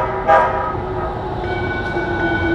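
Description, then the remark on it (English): A Red Line metro train rolls into a station, its steady rumble filling the space while a sustained tonal whine or horn hums over it, with a brief louder burst near the start. “Red line train arriving. Stand and south. Stand back from platform edge.”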